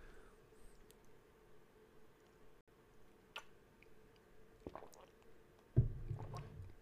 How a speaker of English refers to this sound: I'm gonna sip my coffee.